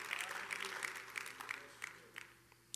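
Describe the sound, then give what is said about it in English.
A church audience clapping their hands unto the Lord, a dense, steady patter of many claps that gradually thins out to a few scattered claps at the end, fairly quiet overall. “Oh, can you clap your hands unto the Lord?”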